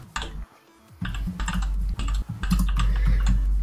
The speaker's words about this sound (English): Click, click, click, click. We're all typing away.